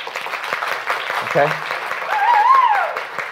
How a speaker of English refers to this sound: For instance, let's do an experiment. Right now, I want you to applaud the truth of the gospel on three. Three, two, one, go.